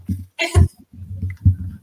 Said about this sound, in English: Bless you.